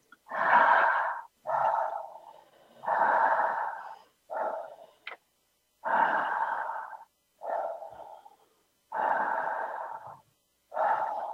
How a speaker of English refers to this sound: And I want you to breathe in and out with no pauses for 5 or 6 breaths as best as you can.